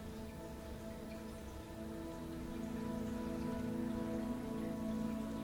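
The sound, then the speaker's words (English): Steady rain falls and patters on a surface, a dense, continuous wash of drops with a low rumbling undertone, gradually swelling a little louder toward the end, with no voices. “And slowly the sky darkens and the rain stops, leaving behind a crisp, clean air all around you.”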